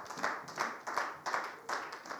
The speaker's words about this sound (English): Why don't you give yourself a hand clap of praise?